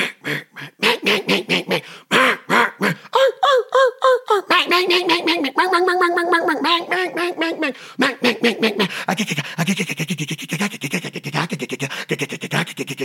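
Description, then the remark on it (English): A duck call imitates mallard hen quacks, loud: sharp rhythmic quacks, a few longer drawn-out nasal calls in the middle, then a fast, chattering run of short quacks. “Emulate a mallard duck.”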